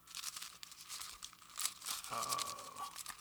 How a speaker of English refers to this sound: You hear my Bible pages turning, friends? That means it's real.